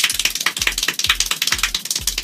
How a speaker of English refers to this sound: A guy in Iowa, he clapped 1,140 times in a minute. Do you believe it? If you don't, here's the video of him doing it. It's kind of wild. Listen to that.